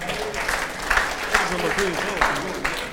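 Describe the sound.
A group claps together in a steady, dense patter of many hands, moderately loud, with a few voices murmuring and calling out beneath the clapping.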